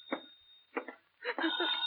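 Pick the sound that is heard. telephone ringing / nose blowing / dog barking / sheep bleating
telephone ringing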